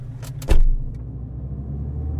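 A stranger's car engine idles with a steady, low rumble throughout as the vehicle creeps slightly forward, broken near the start by a short burst of mechanical clunking and rattling, then a faint click.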